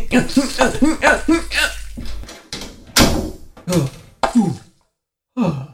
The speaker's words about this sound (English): Or you could just slam the stall door on me.